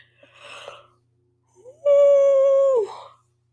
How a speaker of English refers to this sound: God, I keep fucking yawning because my cats woke me up at 7:30 today on my only day to sleep in.